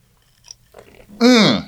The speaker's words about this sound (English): So I think a little victory sip is in order.